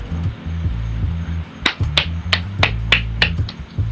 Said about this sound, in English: So you clapping? Yes, because he shut me up.